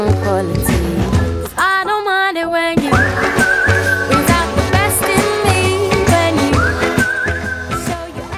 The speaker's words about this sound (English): Yeah, whistling vibes.